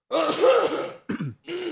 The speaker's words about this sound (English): Go ahead, cough it out.